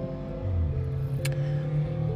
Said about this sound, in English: Someone's engine is super loud and their car is but so little.